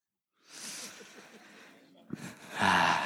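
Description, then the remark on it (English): A person imitates a young man's big, drawn-out yawn in the back row during a church service: a long breathy inhale followed by a louder, voiced groan at the end. “We took a picture during service, somebody did with their phone, and in the very back row, there was a young man who will remain nameless, and he was like this. Big yawn.”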